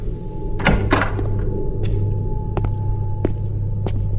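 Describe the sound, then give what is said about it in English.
A door that had been locked is opened with a heavy thunk and a scraping rush, followed by several sharp clicks and knocks, all over a steady low mechanical hum. “Well, first I'm going to open the door.”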